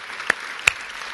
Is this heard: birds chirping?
no